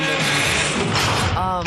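A heavy automatic vault door grinds open with a loud, steady mechanical rumble and ratcheting clatter, ending in a brief wavering whine.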